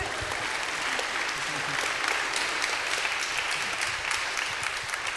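A room full of people applauds steadily, the dense clapping holding a constant level for several seconds without any voices rising above it.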